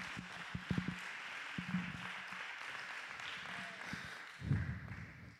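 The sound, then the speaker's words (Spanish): A church audience applauds a family, a steady wash of many hands clapping that holds for several seconds, with a few sharper individual claps and a louder burst near the end. “Denle un aplauso a esta familia.”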